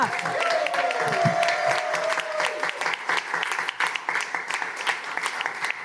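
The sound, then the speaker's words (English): An audience at a comedy debate show claps and cheers loudly as comedian Jess Moyer is introduced, a dense wash of applause with a few voices whooping over it, gradually thinning toward the end. “Gosh, I do love coming here because nowhere else in my life does debating get a cheer.”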